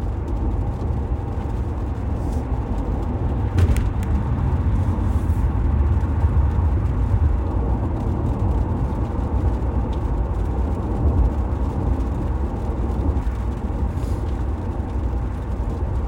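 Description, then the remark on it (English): Steady low rumble of road noise from inside a car driving to the mall, a constant droning hum with no talking, holding an even level throughout and with only a brief faint bump partway through. “Traffic doesn't seem so bad heading to the mall.”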